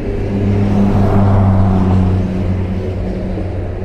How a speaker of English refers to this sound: Now let's collect some sounds from the highway. A semi-truck passing by at highway speeds.